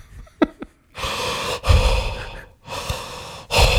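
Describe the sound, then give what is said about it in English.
Heavy, rhythmic breathing of a sleeping person, about three long, airy breaths in and out in steady succession, loud and breathy with brief pauses between them and no talking. “I just breathe heavily.”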